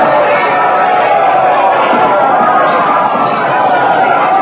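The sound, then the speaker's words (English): A large crowd roars continuously with cheering and overlapping shouts, a dense, steady wall of voices that stays loud throughout, as the crowd cheers Queen Elizabeth, who has just come out onto a castle balcony. “The crowd has seen her. They're cheering. Listen to that ovation.”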